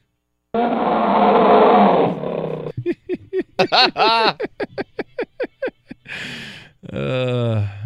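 A loud, rough tiger roar opens, followed by a rapid series of short, throaty growling pulses and a final breathy, rumbling snarl.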